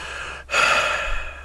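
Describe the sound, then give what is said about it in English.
A person imitates a long, disappointed sigh: a brief breathy intake followed by a drawn-out, airy exhale, fairly loud, with no talking. “It was a sigh. A disappointed sigh.”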